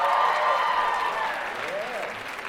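A church audience at a morning service claps steadily with scattered cheers and whoops rising above the dense applause, which stays loud and full before easing off slightly toward the end.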